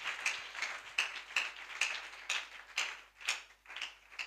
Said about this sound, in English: Let us give a real good clap of praise to the Lord. Amen.